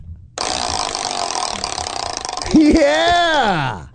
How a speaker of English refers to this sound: And I have a sound effect for that wheel. Goddamn it. See, I was going to spin it, and then you play the sound effect. People actually thought we went to the time to make a little clicking thing.